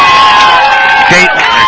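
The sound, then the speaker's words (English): The Geneseo baseball crowd, heard from behind and to the left of home plate, cheers loudly and steadily on an afternoon, a dense wash of overlapping voices and shouts with a few higher whoops rising out of the roar. “and as you can hear, we are lined up right behind home plate to the left of home plate in the Geneseo crowd.”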